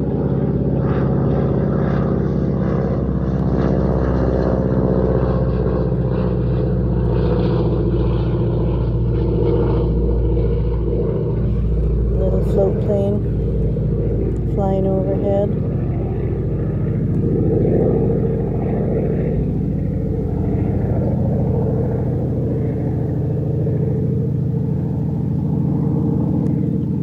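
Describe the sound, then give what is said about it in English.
A float plane's propeller engine drones loudly overhead, a steady buzzing rumble with humming harmonics that holds strong for the whole stretch, slowly shifting in pitch as it passes. No voices. “Emotions are just like that float plane. We feel the stirring. There's a peak intensity, then quietening down and gone.”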